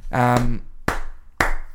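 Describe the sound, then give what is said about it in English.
A short voiced exclamation, then two loud, sharp hand claps spaced about half a second apart, each with a quick, ringing decay. “Well, I'm clapping my boy.”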